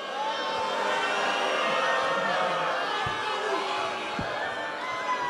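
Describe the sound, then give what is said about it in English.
A large wrestling crowd boos wrestler Cody Rhodes steadily for about five seconds on WrestleMania weekend, a dense, sustained roar of many voices with scattered shouts mixed in and no pauses. “Man, they booing Cody Devontae Rhodes? Y'all booing.”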